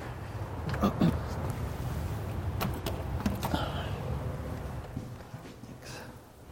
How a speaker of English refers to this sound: I'm going to shut this door if you guys don't mind. I'm having a hard time hearing here.